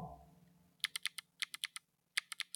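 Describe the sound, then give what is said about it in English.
Crisp, loud clacks of a mechanical keyboard with newly added extra-loud switches being typed on, in three quick bursts of keystrokes separated by short pauses, with no voices. “Actually, have you heard my new switches? I got them. I added even louder ones.”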